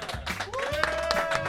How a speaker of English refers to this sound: Please welcome the Gnarly Gnome. Gnome, good evening. Great to be back. Thank you. You can clap for the gnome, too.